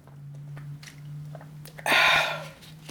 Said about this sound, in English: Hold on, taking a drink of water.